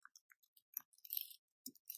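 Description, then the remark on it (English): Quiet clicks and light taps in a loose, irregular pattern from a computer mouse and keyboard being used while searching on Google, with a brief cluster of crisp ticks in the middle and no talking. “I can hear so much clicking. I can hear every click of you Googling.”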